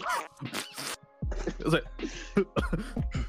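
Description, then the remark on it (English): A voice imitates a string of coughs: several short, harsh bursts in quick succession, fairly loud, mixed with other throaty vocal noises. “the guy next to me, dude, he had, like, the worst diarrhea, and he was trying to hide it with a cough, but he missed every single one.”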